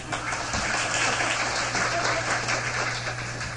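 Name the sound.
audience clapping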